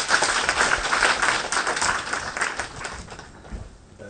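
An audience applauds steadily, welcoming the dean of the School of Business Administration at Dongbei University of Finance and Economics to give a speech of thanks; a dense crackle of many hands clapping that holds strong for several seconds, then thins and softens slightly. No one speaks over it.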